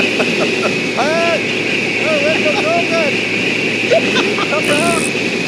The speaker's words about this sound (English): The radio transmission from the pilots was difficult to hear because the sound of wind in the background, but air traffic controllers were able to clear the plane for an immediate return.